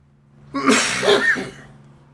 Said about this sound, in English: Sorry, I was coughing